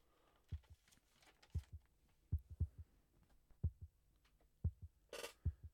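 A slow, steady heartbeat thuds in low double pulses at the opening of an album's first track, repeating evenly over a faint hum, with a brief bright swell near the end.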